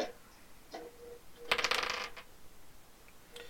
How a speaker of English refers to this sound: DM, do you have two d20s that you can roll for us so that way it's fair? Yeah. All right. Do you see these two dice?